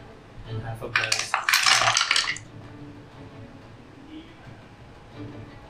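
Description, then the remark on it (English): Dice clatter and tumble across a hard tabletop for about a second and a half, fairly loud, rattling to a stop before a faint low hum; the dice are rolled for death saving throws in a game. “Well, just roll the dice. You got to roll the dice.”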